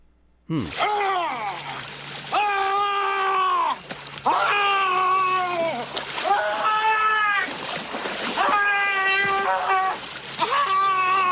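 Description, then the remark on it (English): Drawn-out, anguished wails rise and fall in repeated bursts over a constant wash of splashing, churning water, loud throughout, like someone thrashing and howling in a vat; a PA announcer being dumped into a vat of boiling water. “PA announcer was taken care of, dumped in a vat of boiling water.”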